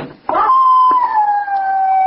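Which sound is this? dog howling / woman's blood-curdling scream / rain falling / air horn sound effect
dog howling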